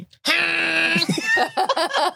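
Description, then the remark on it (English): A person vocally imitates a lizard's tongue-grab noise for a character using a lightning tongue to pickpocket: a loud, strained high-pitched sustained cry lasting under a second, then breaking into a few quick choppy voiced bursts. “You're like a more nuanced Yoshi. I will absolutely make that noise every time I do it.”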